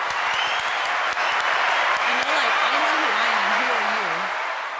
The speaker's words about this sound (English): Oh, we got a round of applause.